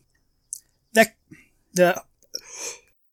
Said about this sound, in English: Had to cough there.